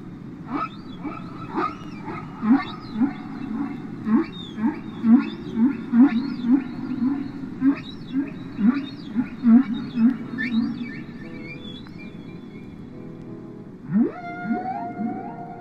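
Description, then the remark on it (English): Humpback whale song: a steady series of rising and falling moans and whoops repeating in a rhythmic phrase, with a lower rumbling groan near the end, no voices present. “Humpback whales as far apart as Mexico, Hawaii, Japan, and the Philippines essentially sing the same song, and each year it's a different song.”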